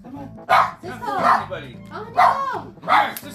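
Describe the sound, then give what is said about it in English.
Dogs in a house bark loudly in four sharp bursts spaced roughly a second apart, with someone talking underneath between the barks. “Yeah, we got a house full of attack dogs over here.”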